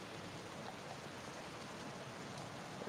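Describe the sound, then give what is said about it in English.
Steady rain falls in a continuous, even hiss with no pauses or individual drops standing out, fairly soft and diffuse, with no voices present. “I vote then we brave the frickin' rain and weather and run for it.”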